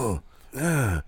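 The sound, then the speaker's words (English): A voice imitates heavy, strained breathing and groaning: a short groan, a brief breathy pause, then a longer drawn-out moan that rises and falls in pitch, fairly loud. “Like, stop breathing heavy. Why do you have to do it?”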